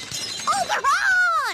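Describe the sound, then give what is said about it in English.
A voice imitates a window shattering as someone swings on a rope out of a breakfast nook: a short, crackly burst that rises into a wavering, pitched whine and trails off, loud and alone without words. “I grab a rope from the ceiling and I swing out the breakfast nook, smashing the window.”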